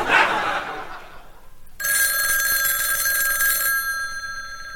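A telephone bell on the line to the number Caribbean 1, Mr. Hughes's phone in the West Indies, starts ringing loudly about halfway through, one sustained metallic ring that then fades and hangs in the air. Soft crowd noise comes before it.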